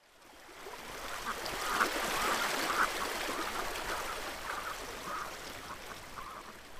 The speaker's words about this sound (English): the River Camogue runs through the small holding of Rosemary Kerrigan. You can hear the river.